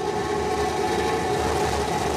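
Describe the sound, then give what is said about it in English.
A loud, steady roar of Starship's Raptor rocket engines igniting as it descends to the landing zone at Starbase, a dense rushing rumble with a faint tonal hum running through it, continuous and unbroken for the whole stretch, with no voices. “And we have ignition.”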